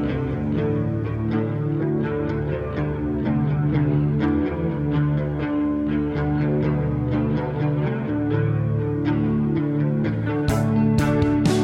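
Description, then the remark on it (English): A song intro plays alone with no voices, its steady instrumental notes washed in reverb and trailing echoes, sustained and moderately loud for the whole stretch, with a few bright transient hits near the end. “This This is where the reverb and the echo really work for me.”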